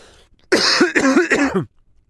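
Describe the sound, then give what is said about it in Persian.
A man, the story character Jean, who says he is not feeling well, coughs in a quick series of about three or four harsh, rasping bursts, loud, with no talking around them. “میگه من حالم زیاد خوش نیست و شروع میکنه به سرفه کردن.”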